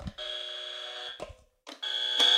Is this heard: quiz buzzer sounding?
yes